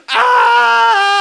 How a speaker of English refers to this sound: Ah! Just a child screaming at the heavens.